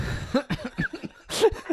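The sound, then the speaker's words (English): A short coughing fit: a rapid string of harsh bursts with brief gaps, ending in one louder, breathier cough and a final small hack. “You sent me into a coughing fit.”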